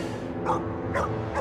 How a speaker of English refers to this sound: In the middle of August, police brought in an elite canine tracking unit from California. The bloodhounds traced the scent from Mindy's car to her house, but the dogs didn't stop there.